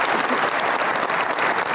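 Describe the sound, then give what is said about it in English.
A crowd claps steadily for a guest, a dense, even wash of many hands applauding at full strength with no voices standing out. “Let's have a round of applause real quick”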